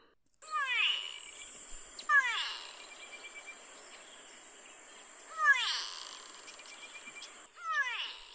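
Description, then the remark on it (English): Calls of a go-away bird, from an African bird family named for a call said to sound like someone saying "go away": four loud, nasal, drawn-out wails with a downward slur, somewhat cat-like, spaced irregularly over a faint steady high-pitched insect hiss. No one speaks. “The go-away birds are a strange family that live in Africa, so named because their call supposedly sounds like someone saying go away.”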